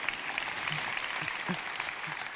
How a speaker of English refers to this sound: My youngest graduated from high school last month. And so, yeah, you can clap for that.